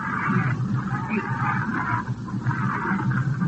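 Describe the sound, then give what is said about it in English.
A steady, loud roar of a jet plane passing overhead during a baseball game broadcast, a broad rushing drone with a mid-pitched whine that holds without a break for the whole stretch. “I've got a jet up overhead here.”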